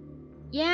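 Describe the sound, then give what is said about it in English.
A cat's meow starts abruptly after a faint low hum, loud, with a bright, rising pitch, and is cut off mid-call. “Yes, it is a sound of cat.”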